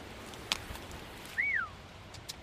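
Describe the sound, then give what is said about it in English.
A single short whistle blast from a dog handler's command whistle, used along with hand signals to direct a searching dog, its pitch swooping up and then down, sounding clear against a quiet outdoor background with a faint tap just before. “So you've got whistle commands you use with her hand signals as well?”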